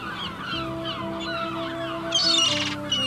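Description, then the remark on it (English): Seagulls call in a steady run of harsh, overlapping cries, with a brighter squawk near the end. No one speaks. “Call the gulls.”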